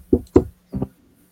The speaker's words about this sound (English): So, but while you're doing all of this, there's a polite knock at the door.